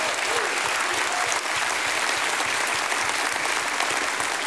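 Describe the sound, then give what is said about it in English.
An audience claps their hands for God in steady, dense applause that holds at a constant loud level for several seconds, with no voices rising above it. “Give God a hand clap.”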